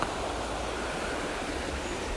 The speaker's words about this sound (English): Now I'm going to set the phone down. We're just going to listen to the river.